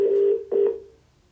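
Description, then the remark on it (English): A steady electronic phone tone sounds in two bursts, a longer one then a shorter one after a brief dip, like a call ringing through on the line, with no voices. “Pick up the phone. Pick up the phone. Pick up the phone.”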